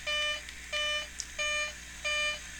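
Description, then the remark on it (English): A cockpit warning beeps four times in a steady repeating pattern in an airplane on landing approach with flaps fully down, each tone sharp and electronic with short gaps between. It is fairly loud, with no one speaking. “And fine, that beeping's annoying me, gear down.”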